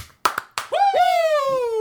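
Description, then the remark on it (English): Two sharp, loud hand claps in quick succession, a 'clap clap' for Ric Flair, followed at once by a long, high voiced whoop that slides slowly downward in pitch. “Can we get a clap clap Ric Flair?”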